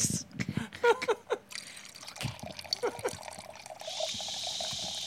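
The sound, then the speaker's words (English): Wine being poured from a bottle into a glass, fairly quiet: a few clinks and gurgles at first, then a steady hissing stream that keeps running to the end, with faint voices in the background. “Can't you hear the pour?”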